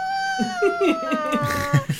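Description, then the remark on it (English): A person imitates a cat's warning growl, a strained, whiny tone over rough, pulsing vocal bursts, lasting about two seconds. “He growls. Stared too much. In fact, he does that thing that cats do where he's like”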